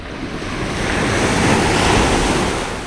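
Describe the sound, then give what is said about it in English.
A single ocean wave swells and crashes in a loud, broad rush of surf that builds to a peak and slowly fades, with wind buffeting the microphone and no voices. “It's not magical. It's just a wave.”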